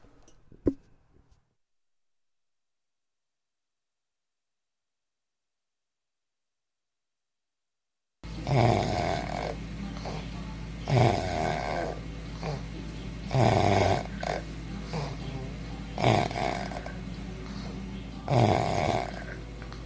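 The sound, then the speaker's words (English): After several seconds of silence, a person snores loudly, each heavy, rattling breath repeating steadily every few seconds over a constant low background hum. “Episode 4, we'll call it Snore.”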